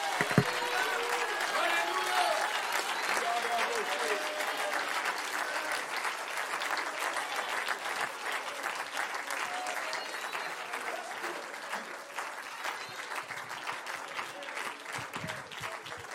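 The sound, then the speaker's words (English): An audience claps hands in steady, sustained applause for about sixteen seconds, a dense wash of overlapping claps with a faint murmur of voices beneath, holding fairly even in loudness throughout. “And if you believe that we're going to win the war, can you stand to your feet, clap your hands, and lift your voice?”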